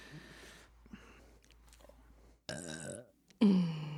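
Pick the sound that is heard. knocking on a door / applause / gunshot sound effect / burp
burp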